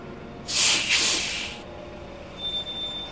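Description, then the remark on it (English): Inside an ART city bus on Route 45 bound for Arlington Mill in Arlington, a loud pneumatic hiss bursts for about a second over a steady low engine rumble, followed by a faint, thin high-pitched whine as the rolling noise continues. “Welcome aboard ART Bus, Route 45, destination Arlington Mill.”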